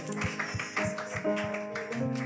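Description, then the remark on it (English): An audience claps for Jesus in a steady, brisk rhythm over sustained keyboard chords, the sharp claps cutting through the music at an even pace. “Multiply the bread. Clap for Jesus.”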